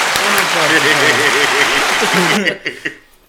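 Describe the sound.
A dense, steady round of applause with voices calling out underneath, holding loud for a couple of seconds before quickly thinning to a few scattered claps.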